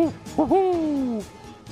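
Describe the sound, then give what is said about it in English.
A clear owl hoot: two quick short notes followed by one long, drawn-out call that slides slightly downward, heard alone with no talking. “I thought owls were supposed to be the wisest of all the birds.”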